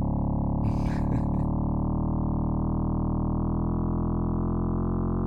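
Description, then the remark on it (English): A steady, buzzy synthesizer drone, slowly modulated by an LFO so it wavers in small stepped increments like a stair-stepped sine wave, loud, with a short burst of noisy crackle near the start. “You kind of hear that, I guess if we were running through an oscilloscope, it would look kind of like a sine wave with a whole bunch of stair steps on it.”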